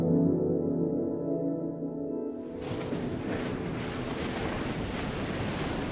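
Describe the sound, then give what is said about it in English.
A low, steady hum gives way to a loud, continuous wash of surf, as ocean waves break and roll in on a beach below a castle with a constant rushing hiss. No voices are heard. “Well, I noticed a terrace and steps that lead down to the ocean.”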